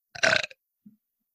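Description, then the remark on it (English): A single loud burp, a short rough croak lasting under half a second, followed by a faint low grunt-like blip, with no talking. “And I was like, none of my bubbles had me burping, or I think I've just been going like, I've been swallowing them, which isn't good.”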